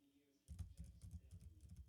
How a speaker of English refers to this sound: So basically, I'm here typing things like I often do. Does that even come up on the microphone?